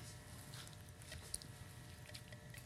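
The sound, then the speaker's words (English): Soft, continuous wet squishing and patting as soy yogurt thinned with a little water is poured over oats and shredded dates and mixed in a bowl, with one brief louder click partway through; quiet, with no talking. “And we're going to pour this on top, and you're just going to mix it all in there.”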